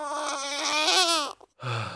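A newborn baby girl, just delivered by emergency cesarean, wails in one long, strained cry, breaks off for a quick breath, then starts crying again. The sound is loud, with no one talking.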